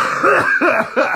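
Three quick, harsh coughs in a rapid row, loud, with no talking around them.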